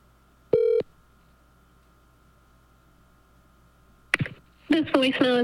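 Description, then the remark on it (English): A single short electronic telephone tone beeps once as a call is placed, followed by a few seconds of near silence before a voice begins speaking. “I got to start giving people a heads up that I'm calling.”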